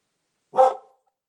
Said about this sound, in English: I missed all that because my dogs are barking.